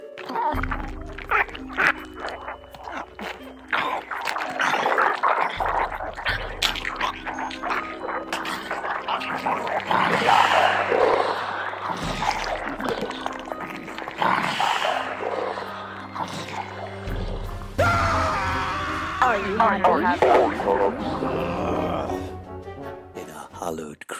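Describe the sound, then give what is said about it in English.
Zombies eating a brain: wet gargling, slurping and guttural growls churn loudly and without pause, layered over a low, droning bass tone that pulses on and off. “This is what it will sound like now they're eating your brain.”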